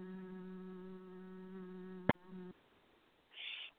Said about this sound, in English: I will start to sing the divine hum. And then you will be able to also come into the divine hum. And you just start humming, and you will feel this deep opening in your heart. Okay, everyone, close your eyes. I will start to hum. Hum. Hum. Hum. Hum.